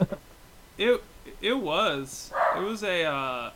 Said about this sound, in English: I hear Taka. Is he a hungry boy, Sonny? I've never heard your dog before.